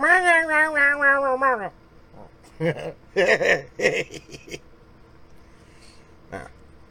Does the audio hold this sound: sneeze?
no